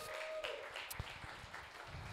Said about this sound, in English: We have some special guests here today. Everybody give them a round of applause.